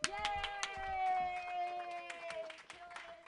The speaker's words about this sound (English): Clap your hands together in a wild slappy like motion